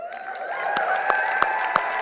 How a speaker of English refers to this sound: Now I want you to do this. I want you to clap, and I want you to, not for the preacher, clap and cheer for those that are going to get saved into the future.